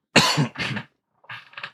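Two loud, close coughs in quick succession, a brief pause, then two softer, shorter coughs. No talking, just harsh bursts of breath.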